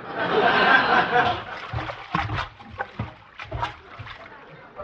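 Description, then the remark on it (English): Water sloshes in a stomach full from 22 glasses of water, a thick swishing wash at first, then a run of gurgling splashes that rise and fall in uneven rhythmic bursts, fairly loud. “And to keep my mind off of smoking and eating, I just drank 22 glasses of water. That's a lot of water.”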